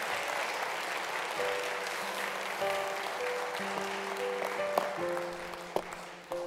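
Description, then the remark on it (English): A church audience applauds with sustained, dense hand clapping as praise to God, steady and fairly loud throughout, with a held organ or keyboard chord sounding underneath. “Well, come on, give God another hand clap of praise.”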